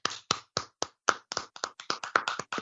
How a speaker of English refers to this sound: Let's give the Fido fam, Barry, a Breaking Kayfabe round of applause.